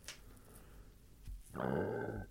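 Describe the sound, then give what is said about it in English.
A single deep, rumbling burp, fairly loud, lasting under a second and following a brief quiet stretch with faint background noise. “It's like a burp coming up.”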